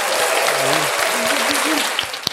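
A steady round of applause, many hands clapping densely and evenly for a couple of seconds, with faint voices and cheers mixed into the crowd noise.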